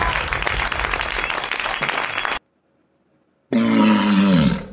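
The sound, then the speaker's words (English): A burst of applause-like noise, a brief silence, then a loud walrus roar: a deep, harmonic bellow that holds and slides lower before cutting off. “It was a walrus.”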